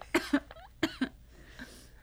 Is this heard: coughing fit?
yes